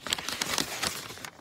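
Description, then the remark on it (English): Paper letters from a mailbox, a yellow piece and a white piece of paper, being handled and crinkled: a steady run of crisp, irregular rustles and crackles at moderate loudness, easing off near the end, with no one speaking. “Got some yellow piece of paper and then a white piece of paper.”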